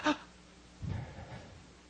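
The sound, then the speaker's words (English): A voice imitates Jesus dramatically breathing his last: a short strained gasp, then a long, low, rattling exhale that fades out, fairly quiet with no words. “Like, he's like, I think that's Jesus breathing his last.”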